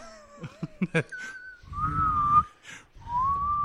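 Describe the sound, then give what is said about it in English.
Clear whistling: a few sustained, slightly wavering high notes, the later ones riding over a low rumbling noise, after a quick run of short choppy sounds at the start. “It's like a whistle.”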